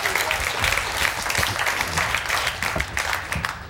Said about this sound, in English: You really need to clap for a hit